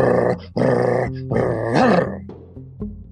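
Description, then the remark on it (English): A person imitates a lion's growl with three or four loud, rough, rumbling bursts in quick succession, harsh and guttural, with no other talk. “And when a lion growls at you, it sounds like someone started a dirt bike up in the brush ahead of you.”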